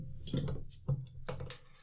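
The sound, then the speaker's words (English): A bottle of Sam Adams Boston Lager cracks open: a brief fizzy hiss and a sharp pop, followed by a couple of light, high clinks of the cap and glass. No one speaks. “Makes a good sound when it pops open.”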